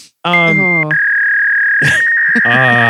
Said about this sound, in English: Somebody picked up the phone on accident while the dial-up was going for a second there.